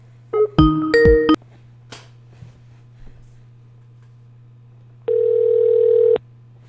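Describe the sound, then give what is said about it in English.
An outgoing Skype call sounds: a quick burst of electronic connection chimes, then a steady ringback tone drones for about a second, over a constant low hum and no talking. “Let me see if I can call on Skype.”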